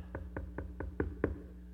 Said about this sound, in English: Listen, this starts on the outside with a knock.